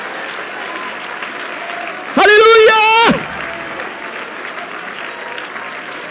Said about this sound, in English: Clap your hands again and shout unto the Lord with a voice of triumph.